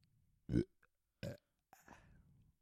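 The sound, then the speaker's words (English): A loud belch followed by a second shorter burp, then a softer, raspy trailing belch, each separated by brief pauses with low background hum, done as burping ASMR. “And I'm not I'm gonna not belch doing it anymore.”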